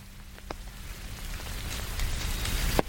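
Steady patter of rain striking a surface, a soft continuous hiss punctuated by a few sharper, louder drops, with no voices, gradually growing slightly fuller.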